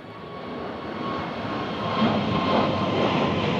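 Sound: airplane engine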